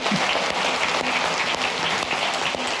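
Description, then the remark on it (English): A small group of about four people claps together steadily for a few seconds, the overlapping claps forming a dense, even patter with no talking. “All right, I got a thing with like four people clapping. So when we clap, we just all got to clap.”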